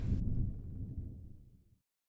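A single thunderclap from a brewing storm on Mount Feathertop, 1,922 metres above sea level: a sharp crack that breaks into a deep, loud rumble, rolling and fading away over about two seconds. No voices.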